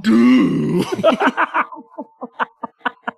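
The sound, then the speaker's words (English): A voice imitates a trombone: a long, low buzzing blare that slides, then breaks into a string of short, punchy honked notes in an uneven rhythm, fading toward the end. “Here, hold up. I'll trombone it.”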